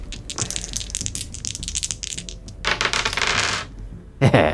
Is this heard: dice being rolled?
yes